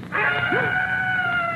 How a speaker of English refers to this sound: Screech owl.